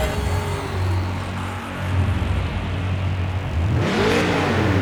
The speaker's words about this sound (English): Start your engine.